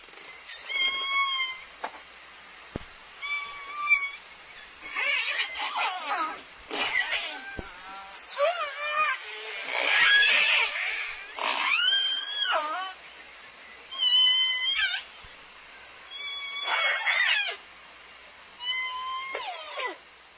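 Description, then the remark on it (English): Whistles and calls from orcas from the Pacific Northwest: a series of squealing, harmonic tones that swoop up and down in pitch, arriving in repeated loud bursts over about twenty seconds, with no voices. “Those are all orcas.”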